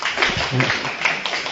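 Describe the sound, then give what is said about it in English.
Audience applause, a dense steady patter of many hands clapping, with a voice briefly audible mixed into the noise. “Why the applause?”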